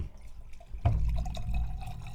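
Red Zinfandel wine being poured into a glass, a steady gurgling stream that starts just under a second in and keeps flowing to the end, with no one talking.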